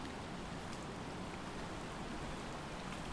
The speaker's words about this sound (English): Man, I just went off the path a little bit down to this creek, and now there's just like a log. It's dark and this thing is wet.